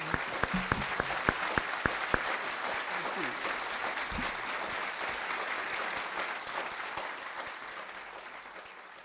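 An audience claps steadily for about nine seconds, a dense wash of many hands, with a few sharp, distinct claps standing out at the start before the applause slowly fades.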